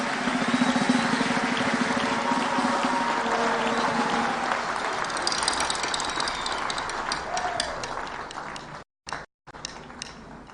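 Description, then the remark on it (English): An audience claps their hands for the Lord in a dense, steady wash of applause that holds for about nine seconds, with faint voices mixed in, then breaks off with brief cut-outs near the end. “Clap your hands for the Lord once again.”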